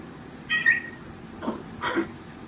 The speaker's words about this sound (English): his cat came into the room and started meowing and disrupted the meeting